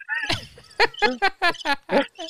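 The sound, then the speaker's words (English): A person's voice mimics cricket chirping with a quick run of about seven short, pitched bursts, fairly loud, with no other talk. “You're the cricket”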